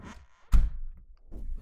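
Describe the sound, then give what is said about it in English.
A door from a small hallway into a garage thuds shut with a sharp impact, followed by a few soft footsteps and shuffling as a person heads into the garage. “I just opened my garage door, and now I'm heading into my garage.”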